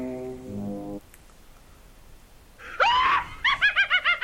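A low, droning horn-like tone, a pause, then a shrill rising screech followed by a loud, rapid, high-pitched witch's cackle of about six bouncing bursts. No one speaks.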